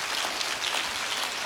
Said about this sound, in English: Somebody clap your hands if you're glad for the truth.